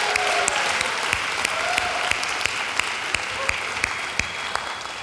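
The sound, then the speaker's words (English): Steady applause from an audience at Hope College for the gospel choir, a dense wash of many hands clapping at an even level throughout, with a few sharper individual claps standing out and no voices. “Let's give another round of applause to the gospel choir.”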